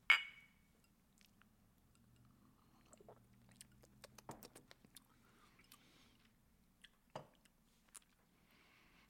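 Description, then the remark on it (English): Glasses of smoky moonshine drinks clink once in a bright, ringing toast at the start, then quiet sipping, gulping and small mouth and glass sounds follow, with no talking. “Try your drink. I will try mine. We will talk about them. Cheers.”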